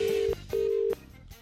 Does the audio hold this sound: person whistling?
no